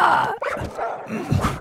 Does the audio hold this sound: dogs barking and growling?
yes